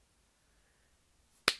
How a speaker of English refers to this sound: Dude. I did not accept that high five. You slapped your hands together. I had to high five myself.